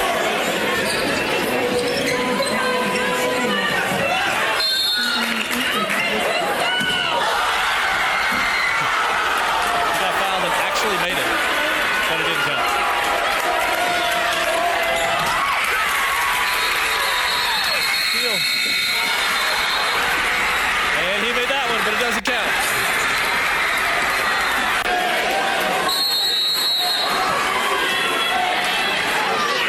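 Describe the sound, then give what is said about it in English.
A basketball crowd erupts in celebration after a buzzer beater, in a video where three buzzer beaters are made, a dense, loud roar of cheering and shouting voices that surges in waves and barely lets up for half a minute. “we have another video that shows like what happens when a team makes a buzzer beater”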